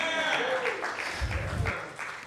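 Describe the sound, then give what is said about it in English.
A light, polite golf clap from a crowd, soft scattered handclaps blending into a brief patter with faint voices mixed in underneath. “That was a golf clap.”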